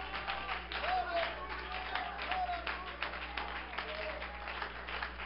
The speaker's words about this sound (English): Can we give him a hand clap of praise tonight?